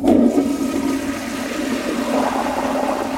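A toilet flushes up close, a loud, steady rush of swirling water that starts abruptly and keeps roaring for a few seconds, with no voices over it.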